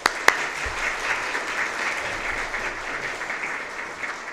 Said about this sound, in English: If you'll all just give him a round of applause.